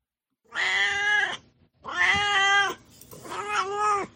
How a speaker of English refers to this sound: let's check in with him again for Duarte's Corner, where my cat Duarte will share his opinions about the book.